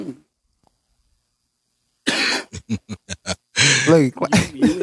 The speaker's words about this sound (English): I was just what I was trying to get you to say. Got me over here coughing.